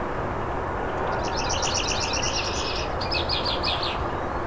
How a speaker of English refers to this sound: A lot of red-winged blackbirds here too.